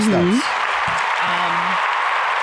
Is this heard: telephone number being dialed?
no